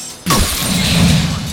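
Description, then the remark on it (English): A sudden loud shattering crash bursts in after a brief quiet moment during a battle aboard a ship, followed by a sustained, noisy wash of clattering debris and rumble that stays loud until the end. “Swords were clanking, sailors were screaming, and then a shattering sound.”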